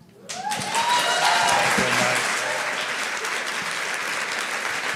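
An audience at a church baptism service breaks into loud, sustained applause that swells quickly and holds steady, a dense wash of clapping with faint cheers mixed in.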